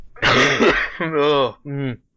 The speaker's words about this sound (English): I should actively mute myself whenever I cough, really, for the good of the people.